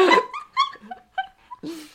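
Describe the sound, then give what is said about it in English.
A person's voice imitates a dog barking, giving a quick series of short yapping woofs, loudest at the start, then a longer, breathier final bark. “I kind of woof. I think I would prefer the woof. Bark. Bark. Bark.”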